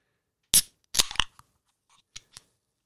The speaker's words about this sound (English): The opening of a can of Old Moat strawberry and apple cider, fresh out the fridge, keep me nice.